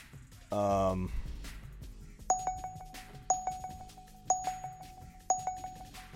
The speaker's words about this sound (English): I'm gonna turn this bell off, the sound off on this other draft's driving me nuts while I'm trying to do this best ball, because it's totally unrelated sound. It's for the mock draft, and I'm literally putting myself through a unnecessary panic mode